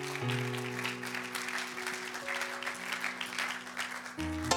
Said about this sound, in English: Let's put our hands together for Jesus Christ.